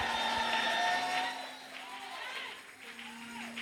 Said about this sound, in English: If I hear your shout and your hand clap, receive that blessing.